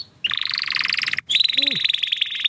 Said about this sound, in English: That's quite enough of that. I've had enough of the canary singing now. It's really annoying.